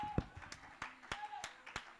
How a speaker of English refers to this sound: Somebody ought to clap your hands and give God praise.